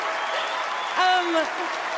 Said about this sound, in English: So much celebration, so much cheering.